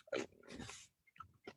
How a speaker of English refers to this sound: I'm chewing an M&M right now, so. How much does it take you to chew an M&M? Well, this is an almond M&M, and so there's some substance.